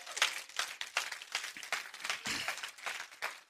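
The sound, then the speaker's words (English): A crowd claps steadily, giving the Lord a hand clap of praise, many hands producing dense, bright applause with rhythmic pulses, sustained and fairly loud throughout without any talking. “Come on, give the Lord a hand and clap of praise, would you?”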